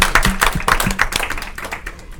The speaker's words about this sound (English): All right, round of applause for our brother. Yes.